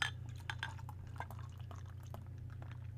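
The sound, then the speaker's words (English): A Christmas porter beer, 6% alcohol, glugs and splashes steadily into a long-neck bottle-shaped pint glass, with a scatter of small clinking and bubbling sounds over a constant low hum and no talking. “Just like one of the cooler glasses you'll see as I'm pouring into a long neck bottle glass.”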